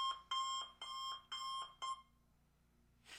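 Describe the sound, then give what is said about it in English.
An alarm clock sound effect from a free online audio library rings in four quick, bright electronic bursts with short gaps between them, loud, then falls quiet before a brief noisy rustle at the end. “There's a alarm clock.”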